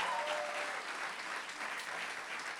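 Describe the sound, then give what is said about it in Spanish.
A church audience claps for God in a steady, dense burst of applause, a broad crackling wash of many hands sustained at even loudness throughout, with no one speaking. “¿Cuánto le pueden dar un aplauso a nuestro Dios?”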